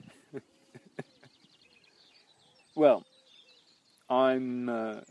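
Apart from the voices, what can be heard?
birds singing at dawn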